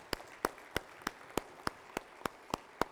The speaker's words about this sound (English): Deacon or trustee, stand up. Give these men a round of applause, will you please? They do a great job.